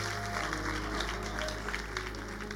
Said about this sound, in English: Clap for these men as they take their seats.